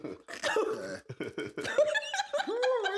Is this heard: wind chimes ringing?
no